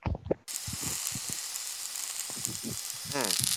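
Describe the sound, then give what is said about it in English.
A steady, crackling sizzle of a steak cooking fills the background, continuous and fairly loud, with a man talking over it throughout. “I hear it kind of sizzle in there. I think there's a steak cooking.”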